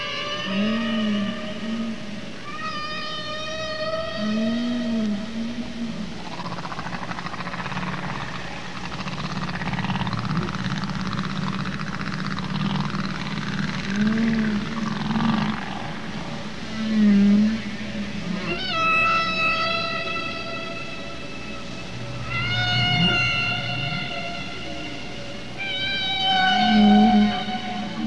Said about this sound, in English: Evocative song of a humpback whale.